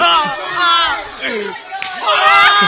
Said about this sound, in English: Oh! He's slapping him. They're just doing Jackass.